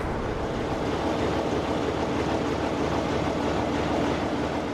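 A British Rail Class 47 (Brush Type 4) diesel-electric locomotive, developed in the 1960s by Brush Traction and named VE Day's 75th anniversary, runs steadily at a station, a loud continuous rumble with a faint pulsing throb underneath and a broad hiss on top, with no voices.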